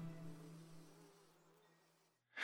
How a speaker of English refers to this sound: Cause if we save the bees, we save the world. And that's buzzing, buzzing.